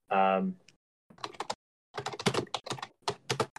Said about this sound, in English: You're going to hear the rattling of my keyboard here.